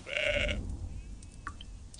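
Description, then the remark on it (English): A single loud, harsh bleat of an angry sheep lasting about half a second, followed by soft rustling of the sheep moving through leaves and low background noise with a couple of faint chirps. “It's an angry sheep moving through leaves.”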